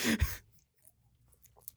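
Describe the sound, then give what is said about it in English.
A quick slurping sip of a sugary drink, a brief noisy burst at the start, followed by faint mouth and swallowing sounds in near silence. “First to combat, taking another sip for a rating.”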